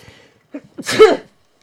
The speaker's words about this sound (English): I'm so sorry. I keep sneezing.